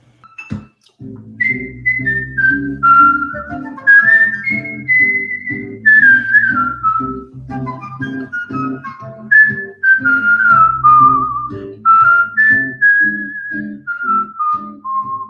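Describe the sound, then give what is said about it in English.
Someone whistles a bright, flowing tune, gliding between notes in phrases that rise and fall, with a steady, rhythmic lower backing underneath throughout. “Well, well, well, whistle while you work.”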